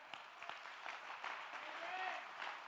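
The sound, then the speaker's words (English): A church audience claps steadily to give God praise during a sermon, a dense patter of many hands at a moderate level, with faint voices calling out underneath. “Clap your hands.”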